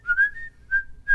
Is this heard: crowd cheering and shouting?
no